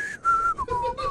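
A person whistles through the teeth a short wavering melody of a few sustained notes, fairly loud, with a strong breathy hiss of air around each tone.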